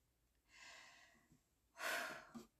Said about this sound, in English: I'm breathing hard over here, because now I'm putting on lipstick.